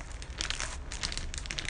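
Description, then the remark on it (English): Paper being crumpled to be thrown into a pot, a dense crackling crinkle in several bursts with no voices, the rustling rising and falling over a couple of seconds. “Okay, I got some paper. Now, I'm gonna throw it into the pot.”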